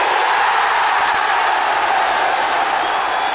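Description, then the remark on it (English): A loud, steady burst of crowd applause, dense and continuous like heavy rain, filling the whole clip with no voices. “I felt it needed some applause.”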